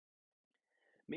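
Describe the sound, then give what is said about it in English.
A faint breathy rustle gives way to a sudden, loud cough burst right at the end, a single harsh throat-clearing hack. “excuse me, there's the cough and stuff. Pardon me.”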